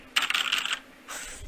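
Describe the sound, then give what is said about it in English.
Someone hits a computer keyboard to imitate a typewriter: quick clattering bursts of tapping come in two close, fairly loud runs separated by a short pause, with no voices. “Anyhow, that was me just hitting my keyboard.”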